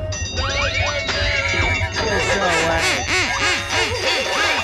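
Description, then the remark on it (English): A rapid string of loud, nasal duck quacks repeats in a steady rhythm, layered over bright ringing tones and a low droning hum, with no one talking. “I'm telling you, that duck rock is going to be what all the kids are swaying to. Quack, quack.”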